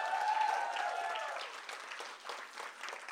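An audience at a book signing event claps steadily for about three seconds for the person who made the cookies, a dense patter of many hands that starts full and gradually thins, with a few scattered brighter claps toward the end.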